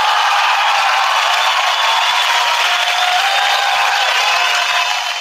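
An audience applauds loudly and steadily at the end of the show, a dense wash of clapping that holds for about five seconds before easing slightly at the end, with no voices over it.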